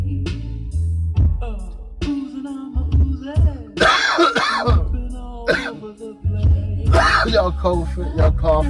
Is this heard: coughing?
yes